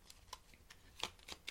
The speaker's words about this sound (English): And if you are on the podcast and you hear some shuffling, obviously, because I'm doing readings.